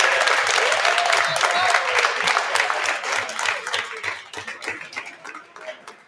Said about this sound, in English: the reason why I asked him to clap up your hair is I want to know if they can clap louder for 500-plus wins. Only six coaches in the state of New York to get to 500 wins, 500 plus and counting. Can you clap louder for 500 than you did for the hair?